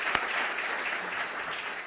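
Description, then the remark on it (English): A crowd applauds students' outstanding work, including a collage of Anna Julia Cooper, in a steady, dense wash of clapping that holds at an even level for the full two seconds, with one sharper single clap standing out near the start. “Can I please get a round of applause?”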